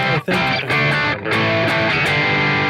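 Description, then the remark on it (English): An electric guitar through a low-gain tube amp, mildly crunchy, playing loud sustained chords with a couple of quick breaks between strums, rich in ringing overtones and with no voices. “All right, so here's a much less gainy tone.”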